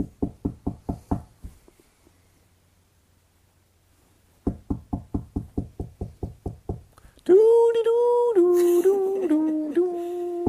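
Two bursts of rapid, loud knocking on a door, each about a dozen quick raps, separated by a quiet pause, followed by a sustained, wavering tonal voice-like sound.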